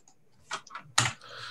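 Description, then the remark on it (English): A few crisp clicks of a button on a computer, three sharp taps spaced unevenly over about a second, fairly quiet, with no talking. “Then I click this button.”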